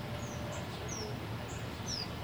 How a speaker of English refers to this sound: There's three. Oh my god, he's so cute. I want him. We got a family of birds on the fence post. Finch or something? It doesn't, no, it does not look like a finch.